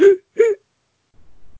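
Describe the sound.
A voice imitates a tiger coughing or gagging with two short, rough, strained bursts, followed by near silence and a faint low rumble.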